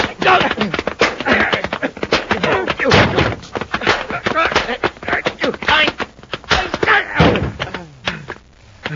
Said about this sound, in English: hadn't dropped with that last punch, I'd have folded.